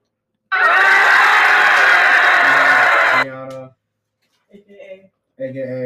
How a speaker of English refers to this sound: No, hold on, we gotta bring out our guest. Tonight. Yeah, yeah. Please. Can we get the clap, please?